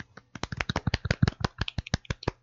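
A soft golf clap: a rapid, quiet patter of light hand claps, around twenty crisp taps in a slightly uneven rhythm, with no talking.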